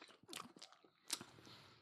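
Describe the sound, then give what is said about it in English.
Wet crunching of someone chewing a crunchy sour sweet with a crunchy bit in the middle, with several sharp bites and crackles in quick irregular succession, loudest near the middle, no speech. “It's got like a crunchy bit, a bit like an eyeball would have, the cornea.”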